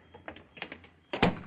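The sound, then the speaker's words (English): A door closes: a few light knocks and rattles as it swings, then a solid thud as it shuts. There is no talking. “Close the door.”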